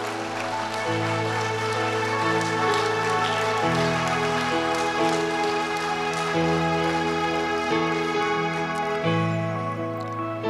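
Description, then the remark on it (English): An audience claps steadily, giving God a hand clap, in a dense, continuous patter while sustained keyboard chords shift underneath, holding at a fairly even loudness throughout. “I don't know, just give God a hand clap.”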